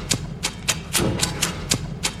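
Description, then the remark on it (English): A lighter lid in a film scene clicks open and shut about eight times in a steady, slightly uneven rhythm, each click sharp and bright over a low, murmuring rumble. “All right, I may have played that twice, but still, there's a lot of clicking, man. A lot of lighter.”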